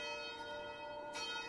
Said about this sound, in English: And as you do, you begin to hear the bells much louder this time.